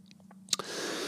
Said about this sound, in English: Don't mind me, I'm just having a sip of tequila.